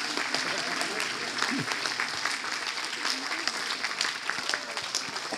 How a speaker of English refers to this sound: come on, we're clapping for you, but I know you're here.